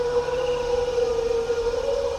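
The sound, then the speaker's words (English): A brachiosaur's singing call from a sound effect: one long, loud, steady tone with a slight waver and rich overtones, held for about two seconds with no talking. “If it's a big, majestic dinosaur like the brachiosaur, you give it scale, but you give it song. They're singing.”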